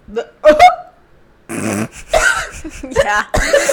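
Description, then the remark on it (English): A voice imitates a cartoon dog's howling yell: a short pitched whoop, a brief pause, then a longer raspy, strained holler, loud. “What is the classic Goofy noise? Like, that's kind of like a dog howl.”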